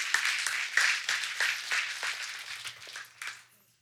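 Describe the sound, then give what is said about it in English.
Light, scattered clapping from a group, a loose patter of claps with no strong rhythm that stays fairly subdued and tapers off to silence after a few seconds. “Sure don't want to offer to the Lord a golf clap.”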